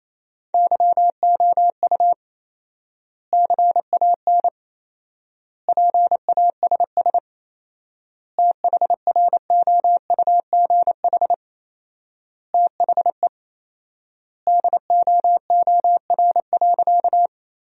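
Rapid Morse code at 28 words per minute, sending sentences built from the top 400 words with 4x word spacing, in a single steady, mid-pitched beeping tone, keyed in quick dots and dashes, with clusters of characters separated by long silent pauses between words; no voices.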